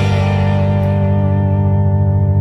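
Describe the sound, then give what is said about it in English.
David's electric guitar part from the tape, digitally reversed to reveal what he actually played: one loud, sustained, effect-laden chord ringing alone, its bright upper overtones slowly fading while the low tones hold steady. “And I can do the same with David's guitar.”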